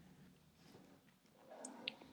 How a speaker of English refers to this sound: I hear a pen. Yeah. Clicking.